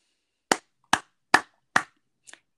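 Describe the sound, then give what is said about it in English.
Hard, sharp hand claps done as a mindfulness exercise: four loud, evenly spaced smacks in a steady rhythm, followed by a faint, quick double tap. No one speaks. “another technique that helps us to define mindfulness for students is something that we call, I ask them to clap their hands 3 times really hard.”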